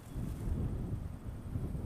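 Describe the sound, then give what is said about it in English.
Steady wind buffeting a microphone outdoors in mid-morning on the mud flats at low tide in Papanui Inlet, a coastal wetland on the Otago Peninsula near Dunedin, about 15 degrees; a low rumbling roar with gusty swells throughout, fairly loud, with no voices. “It's mid-morning and it's pretty windy out here.”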